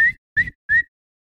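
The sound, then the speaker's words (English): Three short, sharp whistles in quick succession at a baseball game between the Astros and the Red Sox, signaling a pitch, each rising slightly in pitch, evenly spaced and fairly loud, with a low rumbling background of a cheering crowd beneath them. “You watch the tapes and everything, you hear it, crowd's going crazy, and you hear the whistle.”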